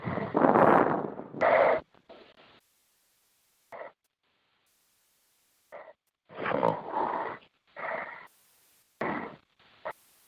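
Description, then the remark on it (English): Heavy, rasping breaths come in irregular bursts, some long and loud, others short and faint, with brief silent gaps between them and no talking. “Lord, who in the heck is breathing heavy?”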